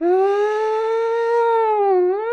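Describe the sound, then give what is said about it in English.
A voice imitates the siren of the ambulance that Burt Reynolds and Dom DeLuise drive in a film, with one loud, sustained wailing tone. It holds steady at a mid pitch, dips briefly near the end, then swoops back up. No other sounds. “So if they need to get a little speed, just hit the sirens and...”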